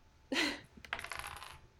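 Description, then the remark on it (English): Two six-sided dice are rolled for damage in a tabletop role-playing game and clatter onto a hard surface: a sharp bright strike, then a quick run of rattling clicks and bounces as they tumble and settle on a total of 5, all within about a second. “Oh, I rolled 5 too.”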